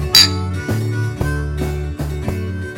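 A single bright clink of beer glasses in a toast rings out right at the start, then gives way to music with a steady bass line and a regular beat.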